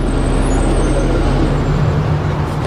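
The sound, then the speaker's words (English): A bus idles with a loud, steady hiss of air brakes over a low engine rumble, continuous for a few seconds with no voices. “This is the pre-roll before I got to the CBS clip. It's a bus.”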